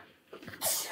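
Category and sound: human body sound, sneeze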